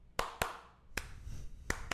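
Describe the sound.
Five sharp hand claps with no voices, demonstrating hand claps on beats two and four against a backbeat. They fall in an uneven pattern: a quick pair, a single clap after a pause, then another quick pair. Each clap is crisp and fairly loud.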